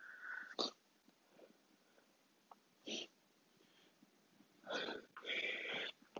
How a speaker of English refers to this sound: Oh God, man! Somebody's thinking about me. I guess making me sneeze over here. Gosh, yeah, y'all on here to hear me sneeze and drink water.